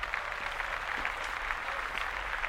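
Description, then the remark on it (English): A steady round of applause, many hands clapping in a dense crackling wash that holds at an even, moderate level for the whole stretch, with no voices over it. “Yay! Round of applause.”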